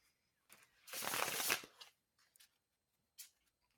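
A tarot deck gets one quick riffle shuffle during a tarot reading, a dense crackling flutter of cards lasting about a second, followed by a few soft taps as the deck is squared up.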